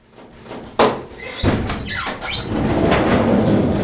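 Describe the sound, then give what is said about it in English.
A staff nurse pulls open the sliding door of a prison transport van with a sharp metallic clack, a rolling scrape and a brief squeal, then the sound settles into a steady low rumble, loud. “Before the van pulled out, a staff nurse saw it, flagged it down, opened the door.”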